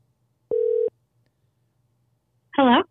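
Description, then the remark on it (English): One short, steady ringback tone from an outgoing phone call sounds clearly against a quiet line hum, followed after a pause by a brief voice answering. “Oh, you can hear the ringing.”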